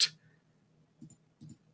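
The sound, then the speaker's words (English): Soft, quiet computer mouse clicks as someone clicks through football fixture rounds: a sharp click at the start, then two quick double-clicks a moment apart, with a faint low hum underneath and no talking. “No, I'm still clicking through.”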